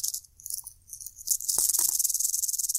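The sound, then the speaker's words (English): A rattlesnake's tail rattle, taken from a box and shaken, a dry, hissing buzz that comes in uneven bursts before swelling into a steady, continuous rattle. A few soft knocks sound underneath. “This box has two rattlesnake rattles in it. Let's see how they sound.”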